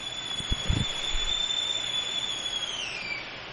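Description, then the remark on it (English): A whistling kettle sounds a steady, shrill high-pitched tone that holds for several seconds, then slides slightly lower near the end, with a few soft low knocks at the start. “What shear doesn't go with a nice whistling kettle in the middle?”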